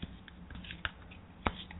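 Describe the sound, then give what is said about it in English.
Tarot cards being shuffled as the reader pulls and blesses the cards: a soft, irregular run of papery rustles and clicks, with two sharper slaps standing out, fairly quiet and with no voices. “I'm just going to pull and bless the cards.”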